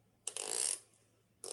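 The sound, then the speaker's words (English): A pen clicking with a raspy, ratchet-like sound: one burst lasting about half a second, a short pause, then another burst begins. It is fairly loud and bright, with no talking. “That was my pen.”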